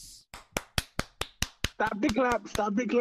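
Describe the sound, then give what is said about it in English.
Sharp hand claps ring out in a steady, even rhythm, roughly a dozen in quick succession; partway through, a person starts talking while the clapping keeps going underneath. “No, stop the clap.”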